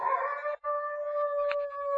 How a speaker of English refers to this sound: It's just some neighbor's dog.